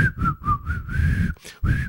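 Someone whistles a short, bouncy melody, several quick phrased notes with brief breathy gaps between them, then one longer held note to finish.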